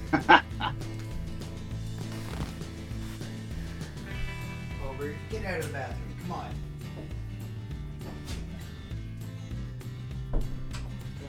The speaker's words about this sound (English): I'm going to just take 2 seconds, get the dog out of the bathroom, because he's probably going for my fucking garbage again.